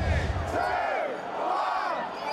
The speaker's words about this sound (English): Britain's 47-year relationship with the European Union officially ended at 11 p.m. Friday night, to shouts of jubilation by Brexit supporters.